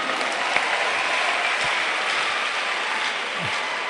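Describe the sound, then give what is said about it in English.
Dense, steady audience applause fills the whole stretch, a continuous wash of many hands clapping at an even level with no speech over it. “Hey, you're not clapping.”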